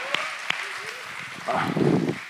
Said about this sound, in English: Let's give him a round of applause for knowing how to fix the problem.